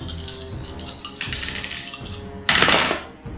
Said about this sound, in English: That was weird. So I threw a dice, it bounced and landed on another dice. That was pretty cool.